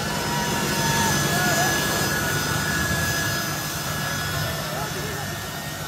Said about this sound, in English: We saw these devastating scenes of Afghans clinging on to a military aircraft that was accelerating down the runway and eventually took off into the air.